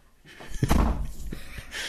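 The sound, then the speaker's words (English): A door slams shut with a single heavy, booming thud, loud, followed by a short rumbling tail and some faint background noise. “Do you not tell her not to slam doors?”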